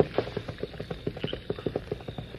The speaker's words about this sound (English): Whoever it was is getting away on horseback. Sounds like they're on the north trail that leads straight into Westport.